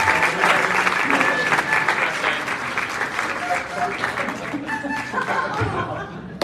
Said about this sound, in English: Would everyone give our actors some applause?